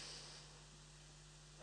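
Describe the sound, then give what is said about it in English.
Faint, airy breathing from a class audience doing a breathing exercise, a long soft inhale through the nose giving way to a breathy exhale through the mouth at the end, over a low steady hum, with no talking. “Okay, in through your nose, out through your mouth, in through your nose.”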